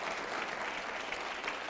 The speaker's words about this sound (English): Now, let's stop right there and clap. I know some of y'all patty cake, baker, man.